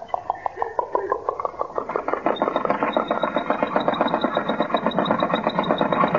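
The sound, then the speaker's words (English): An old car engine coughs and sputters in uneven chugs, then catches and settles into a loud, fast, steady putter with a thin high whine riding on top. “It started by itself.”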